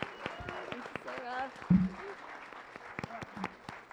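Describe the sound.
An audience applauds a speaker at a live event, with scattered, uneven claps running throughout, mixed with voices calling out and chatting over the clapping, at a moderate level for the whole stretch.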